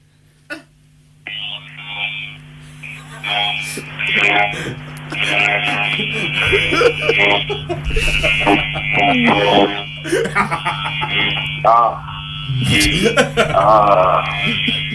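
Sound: electric shaver buzzing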